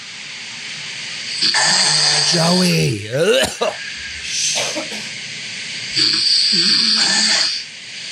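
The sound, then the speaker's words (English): A person imitates a grandmother's loud snoring: long, rasping breaths with a hissing edge and a groaning vocal sweep, repeated about three times, with a voice speaking briefly between them. “This is the snore.”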